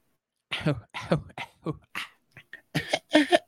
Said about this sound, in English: Well, I feel like if you know, let me clear my throat. Excuse me.